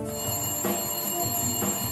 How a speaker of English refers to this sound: That would be the phone.